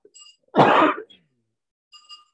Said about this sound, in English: I'm gonna put a cough drop in. I'm sorry that it's probably gonna be annoying, but it's better than me coughing.